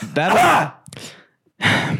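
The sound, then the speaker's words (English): Three rough, throaty coughing bursts, loud and raspy, with a brief pause before the last one. The middle cough is weaker than the other two. “Would you stop fucking coughing?”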